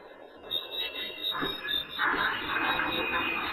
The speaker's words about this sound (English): That's very creepy, and that's a case where you hear the background cricket noise.